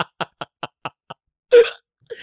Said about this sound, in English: Ooh. The old creaky door. Classic McCloud sex move.